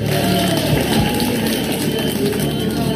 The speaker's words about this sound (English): The notorious anonymous artist is known for his artwork and public art stunts, especially this one. Art connoisseurs could only watch in horror as an expensive piece was shredded before their eyes.